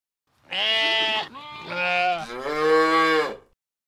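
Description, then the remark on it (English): A cow moos loudly, one long drawn-out call of about three seconds that wavers and shifts in pitch partway through, with no other sounds around it. “Crowley's sheep begins fraternizing with a cow next door.”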